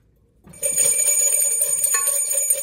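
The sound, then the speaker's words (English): After a brief moment of quiet, bells rung to start a Friday sports talk show burst into steady, bright metallic ringing that shimmers and overlaps at an even loudness until the end, with no voices. “You wear the Hawaiian shirt, you ring the bells, you get going, you talk about sports.”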